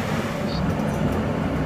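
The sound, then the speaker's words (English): A Brooklyn-bound F local subway train rolls from Lexington Avenue–53rd Street toward 5th Avenue–53rd Street, its steady, dense low rumble and rattle filling the car without a break, with faint higher squeals flickering briefly over the drone. “This is a Brooklyn-bound F local train via the E line.”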